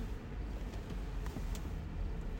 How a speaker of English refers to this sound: Now, we will not say any names, because there's a car approaching. Uh-oh.